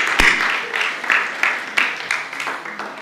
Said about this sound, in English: Stand with me. Come on, clap your hands one more time with me.